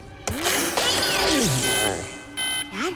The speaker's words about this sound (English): Oh, and then Hugh accidentally triggers, like, the alarm.